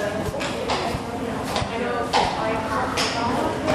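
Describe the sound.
Slow, unhurried horse hooves clip-clop on a hard surface, about one step every half second or so, slightly scuffing, as a horse is led in walking very slowly and dragging its feet, followed by veterinary students, with people talking in the background.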